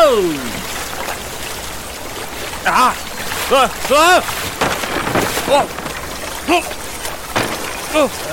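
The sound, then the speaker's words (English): Loud, steady rushing and splashing of cold river water as a raft spins through rapids, water washing over the gunwale and up through the boards, with several people shouting short startled cries over the churning noise. “The cold water splashed over the gunwale and up through the boards, chilling us.”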